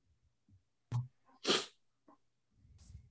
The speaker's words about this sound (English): Excuse me. Clear my throat.